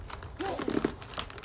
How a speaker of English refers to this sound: Sorry, there's a cat in the background chasing a leaf.